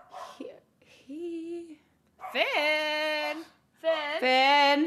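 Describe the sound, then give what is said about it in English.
A dog named Finn barks in a series of about four drawn-out, high-pitched yelps with short pauses between them, growing louder toward the end, with no talking. “He is barking up a little storm out there.”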